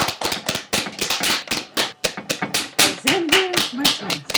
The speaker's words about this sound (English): So I'm going to clap in.